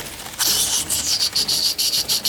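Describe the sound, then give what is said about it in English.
A loud, shrill, high-pitched chittering trills in rapid pulsing bursts, a harsh skittering shriek that stutters on and off without any voices. “As you guys take off running, and then you hear this loud, shrieking, skittering sound.”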